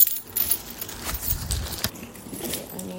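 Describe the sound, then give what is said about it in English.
Apartment keys jangle and clink in a quick, irregular flurry of small metallic taps lasting a few seconds, with no one talking. “I nearly forgot my apartment keys, and I would have absolutely lost it if I forgot those.”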